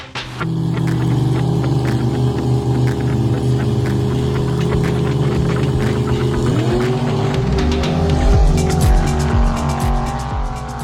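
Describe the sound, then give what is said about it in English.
A loud car engine holds a steady droning pitch, then shifts sharply around the middle with rising, revving tones and clicking, gear-change-like bursts, suggesting a performance car accelerating hard in a launch. “Those car sounds were sent in by Cameron.”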